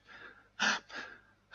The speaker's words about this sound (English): She was also doing a lot of gasping.